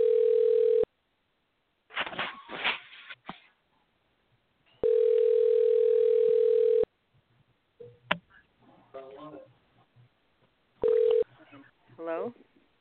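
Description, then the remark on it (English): A telephone call to a woman rings out over the line, steady electronic tones repeating in long, loud bursts, with clicky dialing sounds and brief muffled voices in the gaps between rings. “We'll get her on the phone right now.”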